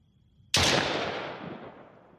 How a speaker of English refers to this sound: And we shoot off a celebratory firework. That's what that was. Don't worry about it.